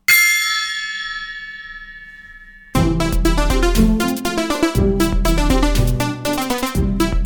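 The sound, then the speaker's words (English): A single loud gong strike rings out alone, its shimmering metallic tone slowly fading over a few seconds before upbeat music abruptly bursts in. “It's time to start the episode with the Parker and Recre Watch gong.”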